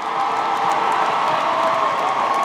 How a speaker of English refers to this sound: Listen, let's give each and every one of them a great round of applause right now, right now.